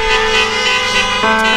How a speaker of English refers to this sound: And I'm assuming that the honking of the horn is going to be what would normally be an amen, Pastor.